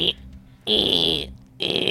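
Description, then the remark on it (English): A voice imitates a machine printing off a sheet of paper with buzzy, raspy mouth noises in three bursts: a short one, a longer sustained whirr, then another starting up, with a sharp hissy edge. “as it prints off this like sheet of paper.”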